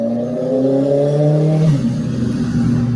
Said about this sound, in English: Wow, that's a loud car going past.